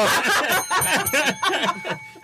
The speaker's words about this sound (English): Stop. Ring the bell.